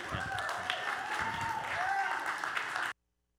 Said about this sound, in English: She really wanted for you guys to clap for her.